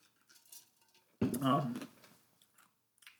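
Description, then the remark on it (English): A quick sip of water: a soft clink of a glass, then a short wet slurp and swallow lasting under a second, with quiet shuffling before it. “Actually, a sip of water.”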